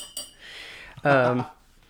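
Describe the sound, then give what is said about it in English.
A ring taps sharply against a hard surface, followed by a soft metallic scrape and another click, then a brief, steady low hum that quickly fades. “Sorry for the ring clicking.”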